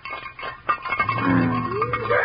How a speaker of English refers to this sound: Quiet now. I'm going to rattle the frying pan.